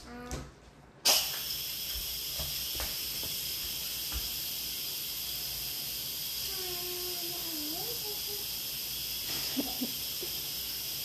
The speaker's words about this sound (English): Oh, I gotta steam the rice.